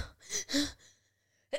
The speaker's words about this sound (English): Oh, excuse me. I have to sneeze. Hold on.